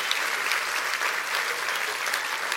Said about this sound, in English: Can you clap your hands and rejoice with me on that?